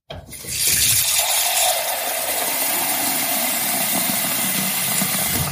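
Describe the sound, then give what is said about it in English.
Water runs steadily from a tap into a one-litre jug in a kitchen, filling it for an Instant Pot water test; a loud continuous rushing hiss that starts abruptly and holds even throughout, with no talking. “So our jug is 1 litre, so it'll be 3 fills of this jug.”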